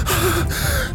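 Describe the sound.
Heavy, ragged panting: two loud gasping breaths in quick succession, breathy and strained, from a flustered man who looks covered in blood or wounded, sitting in a bar, with no talking.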